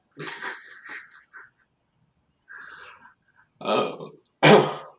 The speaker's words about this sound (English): So I'm going to start coughing in a second.